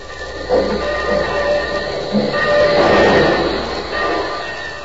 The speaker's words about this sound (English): This episode is in two scenes. Union Station, and then the Aces bungalow. But first to the station. The train's just pulling in.